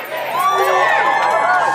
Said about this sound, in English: At this point, the crowd's grown to maybe 3,000 kids, all gathered under the shade of the imposing sandstone wall that surrounds Kirribilli House.